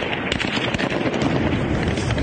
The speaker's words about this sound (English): Unarmed crowds chanting "Go home" managed to turn back Russian armored vehicles in the main square of the southern city of Kherson. But their victory was short-lived. The Russians returned, dispersing the crowds with live rounds.